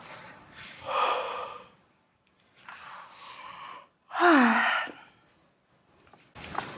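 Several deep breaths, slow airy inhales and exhales separated by short pauses, one exhale carrying a brief voiced sigh, with no talking.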